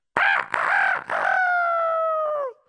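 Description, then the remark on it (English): A person imitates a rooster crowing: one loud cock-a-doodle-doo in three choppy bursts, ending in a long held note that slides down and cuts off. “The rooster crowed, and everybody woke up.”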